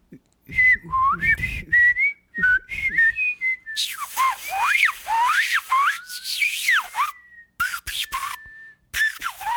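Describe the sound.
Someone whistles a short, lilting tune, with quick rising and falling notes and a few breaks between phrases, clear and unaccompanied.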